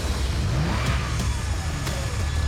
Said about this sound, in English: So when Lori spotted a familiar car speeding toward the parking lot, she turned to run.